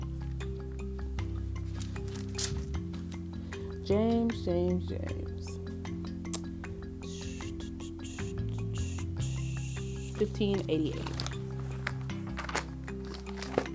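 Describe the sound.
Pages of a paper Bible being flipped, a run of quick, crisp rustles and flicks over a steady low hum, with a voice speaking briefly now and then.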